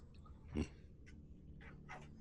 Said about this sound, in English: you heard the dog, right